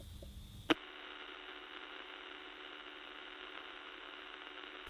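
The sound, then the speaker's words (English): A sharp click cuts in, then steady radio static hisses without pause from a radio tuned to a blank section of the dial where nothing is transmitting, a dense, even wash of noise with a faint tonal hum running through it, moderately loud. “You would have heard if you get a radio now and you turn it to a blank section of the dial where nothing is transmitting, you would hear that exactly the same.”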